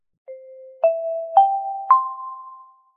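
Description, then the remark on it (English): A four-note chime opening the morning announcements rings out clearly on its own, each tone struck in steady succession and stepping upward in pitch, the last note ringing out and fading. “You know there is a chime.”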